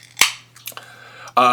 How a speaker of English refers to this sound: Did you just open a bottle or can